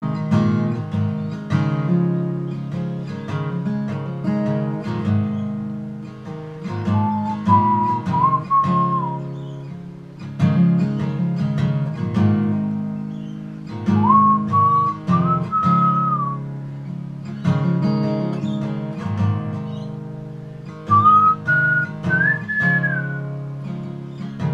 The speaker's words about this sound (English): That's great. I didn't even think about the whistling part.